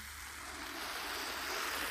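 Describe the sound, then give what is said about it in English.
A continuous fizzing hiss of bubbles from a Lorina sparkling blood orange lemonade, steady and bright, swelling slightly louder toward the end, with no voices. “Oh, you hear those bubbles?”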